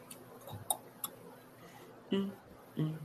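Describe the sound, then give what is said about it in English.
A 30-second countdown clock for a quiz question ticks softly, a few crisp, evenly spaced clicks, followed by two short low murmurs toward the end. No words are spoken. “30 seconds is on the clock.”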